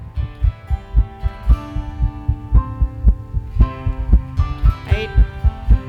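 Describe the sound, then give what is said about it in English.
A child's heartbeat, set to music by a cousin of the speaker, thumps steadily and fairly fast in regular paired beats beneath a soft musical accompaniment of sustained tones and gentle melodic notes, with no voices present. “he took Jamin's heartbeat and he put it to music”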